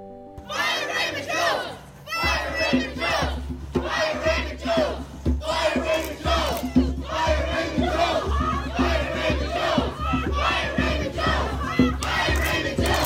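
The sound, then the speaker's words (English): A rally crowd of over 100 people on the steps of the courthouse in Monticello chants in unison, many voices shouting a repeated phrase in steady rhythmic bursts, loud and continuous over a low rumbling hum that runs through the whole clip. “A rally was held on Thursday on the steps of the courthouse in Monticello. Over 100 people joined together.”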